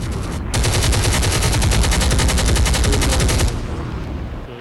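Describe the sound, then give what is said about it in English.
A loud burst of rapid automatic gunfire, a dense rattle of shots lasting about three seconds before cutting off into a fading noisy tail. No voices are heard. “Let that chopper ring.”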